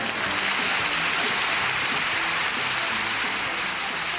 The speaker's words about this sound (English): Did you get all your music and applause there? Yeah, I heard that.